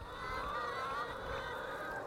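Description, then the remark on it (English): A large flock of free-range hens on a farm clucks and squawks together in a dense, continuous chorus as they come towards a gate, overlapping calls blending into a steady noisy din, with no one speaking. “I can see all of the free range hens in the farm. They're making a lot of noise.”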